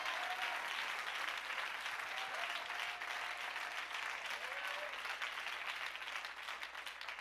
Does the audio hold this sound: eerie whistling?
no